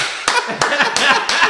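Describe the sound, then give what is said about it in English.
Hands clap sharply four times at a slow, steady pace, each clap a crisp, loud smack, while people keep talking and laughing underneath. “Could you stop clapping?”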